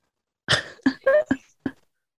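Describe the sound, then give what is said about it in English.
A quick run of five short, sharp, fairly loud sneezes, each one a brief burst with tiny gaps in between and no talking. “Bless you.”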